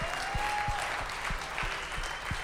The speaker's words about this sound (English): You guys are cheering like you heard them before. You have, haven't you? They're good stuff.